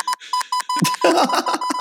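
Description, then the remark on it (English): A steady tone pulses on and off in short and long Morse code beeps spelling out words, while a burst of other noisy sounds overlaps the middle stretch. “Jordan is using slurs through Morse code.”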